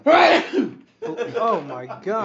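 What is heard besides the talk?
sneeze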